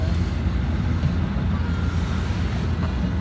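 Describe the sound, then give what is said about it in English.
A steady, close engine rumble from a car beside the speakers' vehicle drones low and constant throughout, with a faint rushing wind-like noise on top and no voices. “Maybe it's that car beside us making all that noise.”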